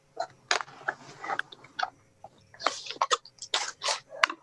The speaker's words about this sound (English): I think I might hear you. I hear something rustling. I don't think that fixed it.